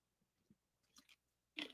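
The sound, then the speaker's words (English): A quick, quiet sip of a drink: a few soft wet mouth sounds and small gulps, ending in a brief louder slurp. No one speaks. “Let me take a quick sip.”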